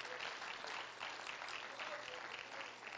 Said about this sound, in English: Praise God. Why don't we clap our hands to the Lord again?